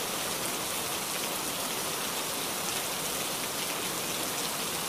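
Steady rain falls continuously, a dense hiss of countless drops pattering on a surface with no pauses. It stays at an even, moderate loudness with no voices present.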